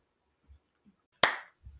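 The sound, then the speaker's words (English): A single sharp hand clap rings out, loud and crisp with a brief fading tail, surrounded by a few soft low thumps and otherwise quiet. “Right when I started it, you're clapping.”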